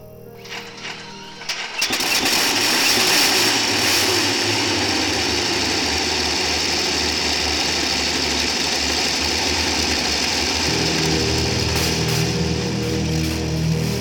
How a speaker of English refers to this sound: Once, thousands of engines of panzer tanks ignited.